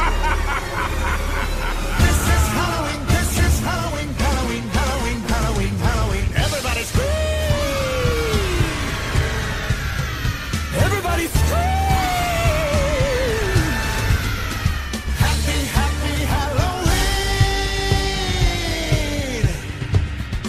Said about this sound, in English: And now, to end our ghostly gathering, we invite you to partake in our favorite Halloween tradition, the scream-along. Any volunteers? Just scream like you're trying to wake the dead!